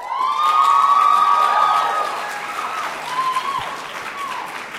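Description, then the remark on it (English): A sustained, high-pitched yell rings out over a crowd's steady applause and cheering, then fades after a couple of seconds while the clapping carries on. “That was a very high-pitched yell.”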